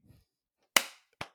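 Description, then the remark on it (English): A single loud, sharp hand clap marking the start of take 2 of a recording, with a brief ringing tail, followed moments later by two quicker, softer snaps; a faint low murmur precedes it. “Take 2. Start.”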